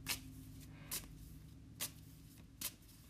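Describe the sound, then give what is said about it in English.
Cards being shuffled close to the microphone for a card reading, four crisp papery bursts spaced at a steady pace, with a low hum underneath and no voices. “I'm shuffling right in front of the microphone.”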